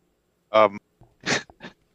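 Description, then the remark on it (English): A quick run of sneezes: a voiced, strained burst followed by two sharper, breathy sneezes in fast succession, fairly loud, with no talking. “Sorry, I was just having a sneezing fit there.”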